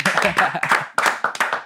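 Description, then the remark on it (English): A short burst of hand clapping from a small group for a visiting band, sharp, mixed with overlapping voices talking and cheering. “Round Cheers. Of applause Cheers.”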